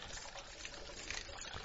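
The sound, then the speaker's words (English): A steady, continuous trickle of water runs from a small hand-cranked ceramic filter pump that works on both the upward and downward stroke, a soft, even splashing stream with no talking. “Yeah, it's a crank, and it's clever, because apparently it cranks on the upward and the downward stroke.”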